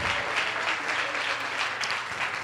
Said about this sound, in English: It's so good to see this woman of God in the house of the Lord. Come on, clap your hands for the woman of God.